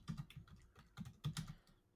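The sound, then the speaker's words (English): Rapid clicking of keys on a computer keyboard, a quick irregular run of taps in bursts, quiet, with no voices. “All I can hear in the background is a typing, and all I think of is enhance.”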